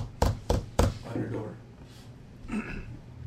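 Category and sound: impact, knocking on a door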